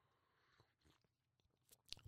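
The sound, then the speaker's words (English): Someone takes a quiet sip of a drink: soft wet mouth noises and small clicks, then a sharper gulp-like click near the end, with no talking. “Let me take a sip.”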